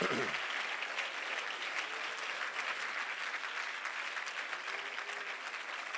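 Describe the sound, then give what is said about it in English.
A church audience stands and claps their hands in praise, steady, continuous applause that fills the whole stretch at an even, moderately loud level, with no clear speech rising above it. “Stand together and clap your hands for it.”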